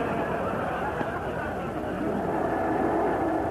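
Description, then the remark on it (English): Ocean surf breaking beside a house at the edge of the water, in a steady, continuous roar, a dense rumbling hiss that holds at an even loudness throughout with no pauses between waves. “The sound of the surf is so soothing, it keeps me wide awake.”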